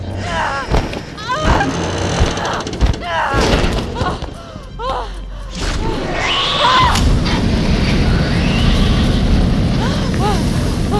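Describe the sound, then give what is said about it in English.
A heavy metal door slams shut with a deep, resonant thud amid people talking, followed by a steady, loud rumbling noise that fills the rest of the scene. “Oh, the metal door!”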